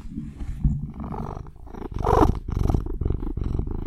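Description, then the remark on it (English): An overweight Russian blue cat purrs, a steady low rumbling with a pulsing rhythm that swells slightly partway through, with no voices. “And that was the soundbite of Welly purring. not really a soundbite. Him actually purring.”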